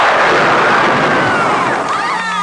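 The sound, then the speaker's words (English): A lightning bolt spell in a TSR Dungeons and Dragons advertisement: a loud, crackling burst of noise sweeps across a wide band, with rising and falling tonal whines shimmering through it, like a zapping electric blast that slowly trails off. “Use your lightning bolt.”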